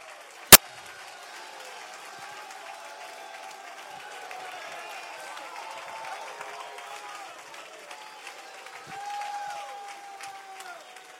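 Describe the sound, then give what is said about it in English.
A church audience claps their hands and shouts unto God together, a steady wash of applause with many overlapping raised voices and cheers, holding fairly even throughout after one sharp crack at the start. “If you believe it, you ought to clap your hands and you ought to shout unto God.”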